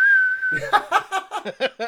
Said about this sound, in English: A slide whistle.